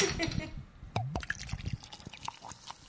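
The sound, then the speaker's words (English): Pacifico beer glugs and splashes into a glass in a quick, vigorous pour, with bubbly fizzing and a faint clink, while people murmur in the background. “It's quite the violent pour you're doing there.”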